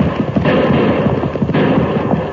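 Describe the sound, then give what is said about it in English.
Loud, dense gunfire crackles steadily for a couple of seconds during a horseback chase, shot at fleeing riders, with two sharper, harsher bursts standing out partway through; no voices are heard. “those bullets were close.”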